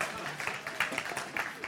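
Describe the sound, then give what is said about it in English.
Soft scattered applause from a small group, a steady patter of hand claps with a few sharper claps standing out, fairly quiet and lasting under two seconds. “Come on, a round of applause, please.”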